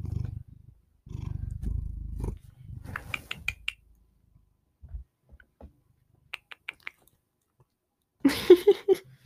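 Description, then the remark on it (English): A cat lying on a person's lap purrs loudly in a deep, rumbling drone that comes in pulses, followed by soft clicks and scratches as it paws, and a short, higher-pitched cry at the end. “Cat ASMR. Dude, you're the one on my lap.”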